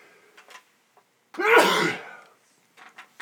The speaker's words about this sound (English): Hang on, I'm going to sneeze for a second. Maybe not. False alarm. Oh, boy.